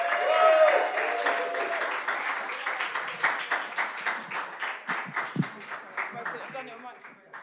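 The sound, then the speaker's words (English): Sustained audience applause for Sarah Pascoe, dense clapping that fades gradually over several seconds, with a faint tone at the start and scattered individual claps trailing off at the end. “Brilliant. Round of applause for Sarah Pascoe, everybody.”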